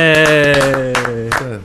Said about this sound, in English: Everybody's happy about this. A little applause.